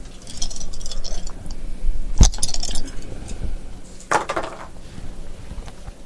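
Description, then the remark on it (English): Three dice rattle and clatter onto a hard surface in a tabletop game roll, with one sharp clack followed moments later by a brief cluster of tumbling clicks, with no one talking. “I would like a charisma plus grammar roll.”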